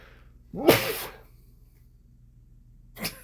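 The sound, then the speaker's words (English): A single loud, close sneeze bursts out with a sharp airy blast, then after a couple of seconds of quiet a shorter, fainter puff follows. No one speaks. “You got another one there? That's the worst. You're like, okay, I've had two. Do I have a third?”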